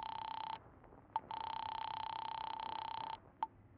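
A telephone being dialed in a drugstore phone booth: a steady buzzing line tone drones for a few seconds, broken by a gap and two short blips. It is clear and alone, with no voices.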